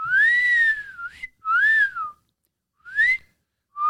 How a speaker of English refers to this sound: But as soon as she walks in the gym, the boxers in the gym start giving her the wolf whistle.